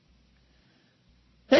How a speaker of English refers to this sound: I'm going to sneeze.